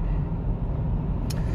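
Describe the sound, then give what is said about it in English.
Steady low rumble of a car driving in heavy lunchtime traffic, heard from inside the vehicle, continuous and moderately loud, with a brief faint high-pitched tick near the end. “Fuck, the traffic's really bad.”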